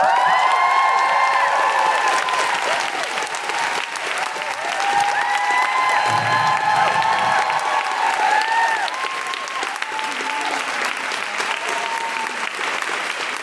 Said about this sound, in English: Roll out your red carpets, make general woohooing noises, and cheer and clap like a Hollywood shiny-teethed American audience for Gemma Arterton!